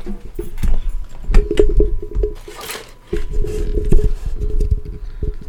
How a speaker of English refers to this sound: The rain continues to fall. And the windshield wipers are just going at it.